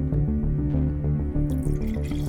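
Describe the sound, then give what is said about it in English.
Beer pours steadily into a glass, with a rapid, rhythmic glugging and gurgling of liquid throughout and nobody speaking. “pouring a glass of beer is Jamie Roberts”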